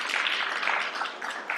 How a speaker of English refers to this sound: It was a beautiful wedding. And yeah, we can clap for that. That's exciting.